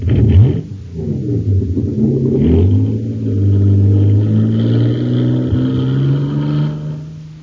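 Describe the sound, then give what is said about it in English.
The supercharged race car Shooting Star, filled with super fuel, roars and revs, its loud harmonic drone climbing in pitch before settling into a sustained high whine as it speeds off. “Wow, look at the Shooting Star go. It's bound to be a winner now because she's supercharged.”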